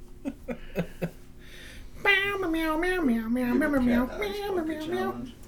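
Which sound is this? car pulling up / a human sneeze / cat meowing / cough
cat meowing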